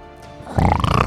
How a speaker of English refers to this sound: You can hear some growls and some, maybe a roar.